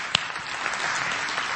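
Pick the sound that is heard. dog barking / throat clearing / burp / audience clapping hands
audience clapping hands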